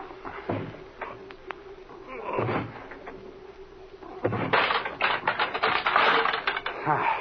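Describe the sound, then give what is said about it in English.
A wooden door with a weak lock is forced open with a shoulder: a couple of dull shoulder thumps, then a loud burst of cracking and creaking wood with rattling, clicking hardware. “Come on here, put your shoulder to this door. It doesn't have much of a lock.”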